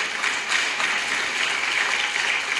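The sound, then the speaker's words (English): An audience claps in steady, dense applause for the Lord at a constant level for a few seconds, with no one speaking over it. “Give a strong applause to the Lord.”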